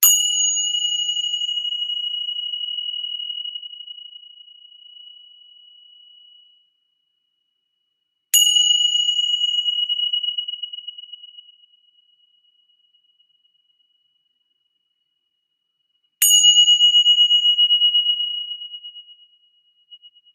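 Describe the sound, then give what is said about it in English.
Three chime strikes, struck to clear energy, spaced several seconds apart, each a bright, clear metallic tone that rings out and slowly fades. No voices, just the chime ringing alone. “If you have have AirPods on or air, you know, any type of earbud, I'm going to clear energy with my chimes, and so just protect your ears for a moment.”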